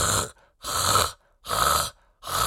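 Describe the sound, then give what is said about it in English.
A voice imitates the defective reversing siren of a huge delivery lorry with a harsh, raspy repeated blast: three loud, broad bursts separated by short silences, steady and evenly spaced. “To be fair to B-Jam, they didn't kill him, but one of their huge delivery lorries with a defective reversing siren did.”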